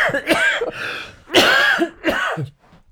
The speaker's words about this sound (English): You will doubtless recall that because I've had this cough and all that sort of thing,